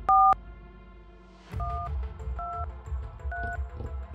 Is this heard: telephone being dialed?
yes